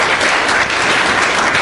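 A crowd claps steadily, a loud, dense wash of many hands at an even level throughout, with no voices standing out.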